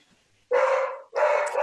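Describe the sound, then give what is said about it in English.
A dog barks twice in quick succession, each bark loud and somewhat drawn out, with a brief gap between them and no talking. “That's a different dog, by the way.”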